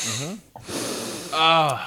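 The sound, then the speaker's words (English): A breathy sniff of a BB Special beer into the microphone, about half a second long, with voiced vocal sounds just before and after it. “Gotta sniff the mic.”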